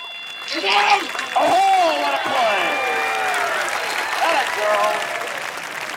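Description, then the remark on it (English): A baseball crowd roars with cheering and applause once a play is called, swelling in the first second and then holding loud and steady, with individual shouts and whoops rising out of the din. “Now, ready, Once the play is called, the noise comes back.”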